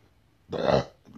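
A single loud burp lasting under half a second, a throaty rumbling eructation that rises suddenly out of quiet and fades quickly, with no talking over it.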